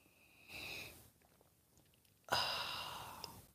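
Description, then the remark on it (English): Two breathy slurping sips from a drink, a short soft one followed by a louder, longer one that starts abruptly and trails off like a satisfied exhale, with no talking. “And join me now for the unparalleled pleasure, the dopamine hit of the day, the thing that makes everything better. It's called the simultaneous sip. It happens now.”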